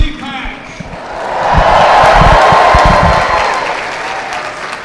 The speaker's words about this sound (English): The crowd is cheering 4 more years. They're so excited to hear him say that.